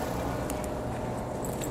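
A car engine rumbles steadily, a low continuous drone with no breaks, fairly loud and heard on its own without anyone talking.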